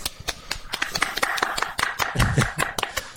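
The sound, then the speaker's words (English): A light, scattered golf clap welcoming a guest to a show: a handful of people clapping in an uneven patter of sharp, crisp claps for about three seconds, with a brief low rumble partway through. “Round of applause.”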